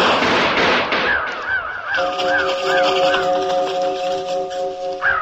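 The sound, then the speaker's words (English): After a gunshot echoes through a canyon, a swarm of ravens takes flight from a distant cliff: a sudden noisy rush, then a chorus of harsh, rising-and-falling cries and sustained calls overlapping steadily for several seconds. “A single gunshot reverberated throughout the canyon, and a swarm of ravens exploded from a distant cliff.”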